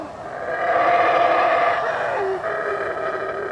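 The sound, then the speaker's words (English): Black howler monkeys in the forest roar in a steady, droning chorus: a loud, continuous, growling howl with layered tones that holds for several seconds and swells slightly before easing off. “They're black howler monkeys.”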